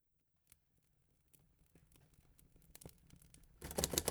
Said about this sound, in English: I could not sleep. As the night waned on, I sought solace through the keys of my typewriter.